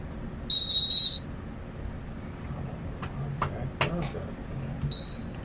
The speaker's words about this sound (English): Tweets ain't tweeting. The cheap whistle. The whistle broke.